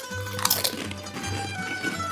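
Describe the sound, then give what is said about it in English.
Guinness-flavored potato chips being crunched: a couple of sharp, crisp bites up front, followed by a stretch of softer, moist chewing over a steady low hum. “Definitely has a crunch to it.”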